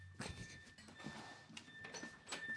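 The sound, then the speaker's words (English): A thin, high electronic front door buzzer drones steadily through the whole clip, fairly quiet, with a few soft knocks and rustling bursts over it. “oh my god, this door won't stop going off.”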